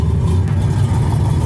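A Pontiac Fiero mid-engine, two-passenger sports car engine revs loudly, its deep rumbling drone holding steady and unbroken for the whole short moment, with no voices present.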